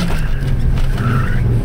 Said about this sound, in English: Then from my peripheral, I saw a road coming up on my right, and without even considering which street I was turning into, I yanked the steering wheel as hard as I could and made a screeching right turn.